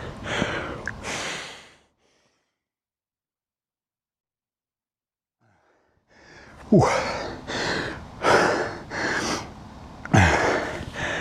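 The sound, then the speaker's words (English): Heavy, labored breathing after exercise: a couple of loud rasping breaths, several seconds of silence, then a run of rapid, forceful gasping breaths in a steady rhythm. “My breathing is getting a lot harder to catch.”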